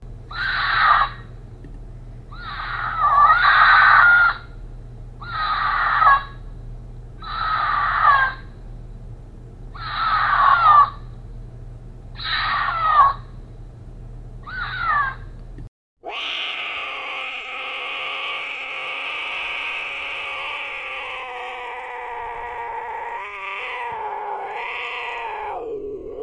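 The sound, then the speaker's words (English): A mountain lion screams: about seven loud, shrill, raspy cries repeat roughly every two seconds, then give way to one long, unbroken wailing scream. No one speaks. “We're going to let you know what a screaming mountain lion sounds like right now.”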